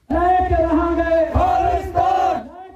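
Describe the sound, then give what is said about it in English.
A crowd of protesters supporting a Sikh homeland chants loudly in unison against a speech by India's High Commissioner to Canada in Surrey, British Columbia, many voices blending into three sustained, drawn-out phrases with a steady, insistent rhythm and no single speaker standing out. “In a Surrey, BC speech by India's High Commissioner to Canada to promote trade, it was protested by supporters of a Sikh homeland.”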